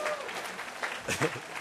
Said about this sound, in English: We clap because it's true.